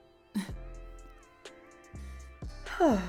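A big, drawn-out yawn at 6 o'clock in the morning, with a breathy vocal sound that swoops upward in pitch near the end, over quiet background hum with a few soft clicks.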